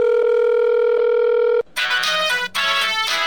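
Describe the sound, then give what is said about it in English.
A telephone's steady dial tone hums for a moment as someone places a call, then cuts to bright, buzzy electronic ringing with a brief gap partway through. It is fairly loud, with no voices. “So I called up to check into it.”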